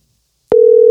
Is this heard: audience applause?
no